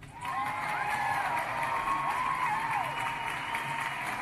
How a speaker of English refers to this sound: Let me get an applause for that.